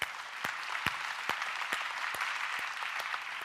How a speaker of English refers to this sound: Thank you, volunteers, and everybody that made that happen. Let's give them a hand.